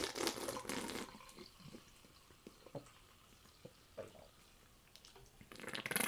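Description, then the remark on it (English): Ginger root beer is poured into a glass of almond milk in two strong, splashing bursts at the start and end, with quieter fizzing, trickling and small pops in between. Fairly loud, with no talking. “Now I'm gonna pour it into my milk.”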